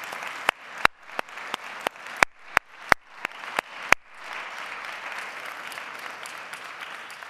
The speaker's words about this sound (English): So we don't want to leave that out this morning as we think of our veterans. So will you once again give them a round of applause for their families, for the vets this morning.